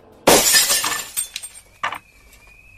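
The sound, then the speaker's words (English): A store's glass window is smashed with a rock: a loud, sudden crash of shattering glass, followed by scattered tinkling shards and a few smaller clinks as pieces fall, ending in a faint ringing tone. “Through the broken glass.”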